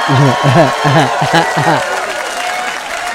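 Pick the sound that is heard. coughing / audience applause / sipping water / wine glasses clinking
audience applause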